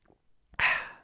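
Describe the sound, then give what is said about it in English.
A single loud slurping sip of hot black Starbucks coffee, an airy hiss lasting about half a second, preceded by a few faint soft rustles. “Let me take another sip right now.”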